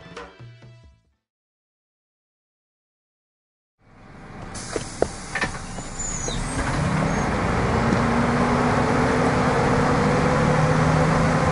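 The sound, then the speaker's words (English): After a short tonal burst and a few seconds of silence, the steady roar and hiss of city traffic and a bus fades in and holds loud, with no talking, in the center of West Hollywood's Boys Town area at Santa Monica and Robertson. “Well, I just got off the bus in the center of West Hollywood's Boys Town area on Santa Monica and Robertson.”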